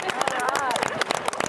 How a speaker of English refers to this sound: He's probably saying, why are they cheering for me?